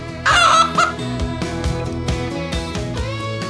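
A chicken gives a loud, squawking cluck early on, then quieter clucks follow over a steady, rhythmic musical backing with no one speaking.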